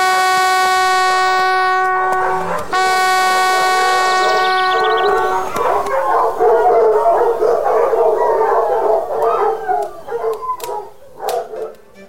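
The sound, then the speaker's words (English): A hunting horn sounds two long, loud, steady blasts at the start of a morning hunt on an estate, then a pack of hounds bred for tracking breaks into excited howling and baying that carries on, rising and falling, until the end. “You may sound the horn.”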